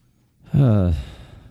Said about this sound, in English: Sorry for the gasp.